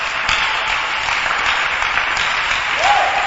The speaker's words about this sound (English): Clap for Jesus, my brother, my sister.